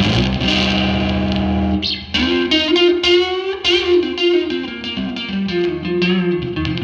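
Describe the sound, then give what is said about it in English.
A baritone electric guitar played through an amp on the neck pickup, loud: a thick, distorted chord rings for two seconds, then a run of picked notes and chords follows, with no talking. “That's in the bridge position on number 4 on the baritone. Let's go to the middle. Whoa. And let's go to the neck.”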